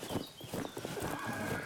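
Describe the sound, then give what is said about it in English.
A black horse, with a quick run of short, rhythmic thumps and snorting bursts over a steady low background, fairly loud and with no one talking. “Just come to pick my horse up.”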